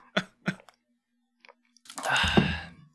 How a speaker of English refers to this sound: I got me a little fucking tequila sunrise. Hey, I need to sip a little off the top because I definitely poured too heavy on the orange juice.